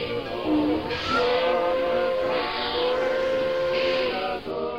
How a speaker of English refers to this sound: I planted myself in a train seat. There was an awkward heave of the cars, a potent chug or two, and the Big Rock Candy Special ambled out of the station.